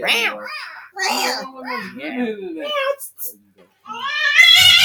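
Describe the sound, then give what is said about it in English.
A cat meows repeatedly in a studio, a string of drawn-out, wavering cries with brief pauses between them, ending on a louder, higher-pitched yowl. “My cats love this studio.”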